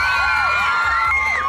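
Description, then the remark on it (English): A crowd of children screams and cheers together, a loud, continuous wash of high-pitched overlapping voices with rising and falling shrieks that fills the short moment without pause. “It's the kids. I love the kids. I love how they scream about everything.”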